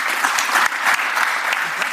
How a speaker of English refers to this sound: Thanks so much for the talk as well. Thank you. Big applause.